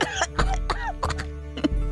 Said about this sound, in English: Yeah, if anything, I'd say the scale's in your direction at this point, and I'll take a big drag off it, and then cough.